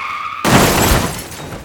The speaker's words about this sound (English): He turned his head suddenly to look towards the sound of screeching tires and crunching metal coming from the street.